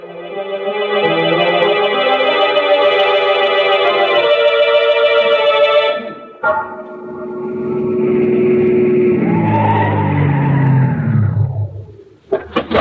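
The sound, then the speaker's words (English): A car engine roars loudly, then tires squeal and skid in a long, sliding screech as the car pulls away fast and the sound fades, ending with a couple of sharp knocks. “My car's right across the street. Quick!”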